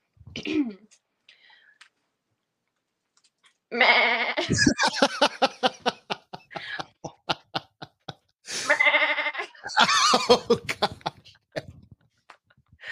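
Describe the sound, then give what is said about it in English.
A woman imitates a goat with loud, wavering bleats, two long quavering cries separated by a short pause, with a brief throaty sound at the start and rapid vibrato pulses running through each call. “She just did a goat impersonation.”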